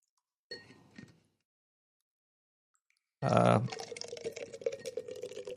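A brief clink of a can or glass, a pause, then Guinness beer pouring loudly and steadily into a cup, with a foamy, gurgling rush that continues to the end.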